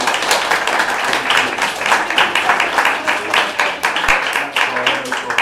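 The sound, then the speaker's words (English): An audience applauds Chris and Kaz for about five seconds, a dense, crackling wash of many hands clapping at an even, fairly loud level throughout. “Give Chris and Kaz a round of applause.”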